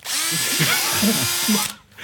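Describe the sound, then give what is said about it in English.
A power drill with salt and pepper duct-taped to it, presented as a salt and pepper sprayer, whirs loudly, holding a steady high-pitched motor whine for under two seconds before abruptly cutting off. “Macho Man, I want to rain on your parade there, but that's just a fucking drill with some salt and pepper duct tape to it.”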